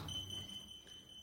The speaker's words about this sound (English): If that alarm is squawking, it means the Nazis are back at it, blitzing Krieg some when in history.